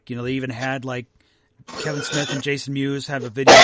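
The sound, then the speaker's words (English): A man talks casually, then a sudden loud, sharp sneeze bursts out right at the end, cutting over the speech. “And there's, oh, Gesundheit.”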